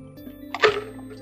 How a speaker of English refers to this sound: And let me take a sip of water.